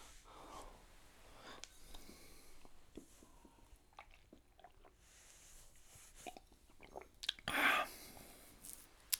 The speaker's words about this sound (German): Ich muss niesen.